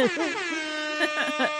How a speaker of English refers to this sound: Hip hop air horns. Let me find the button.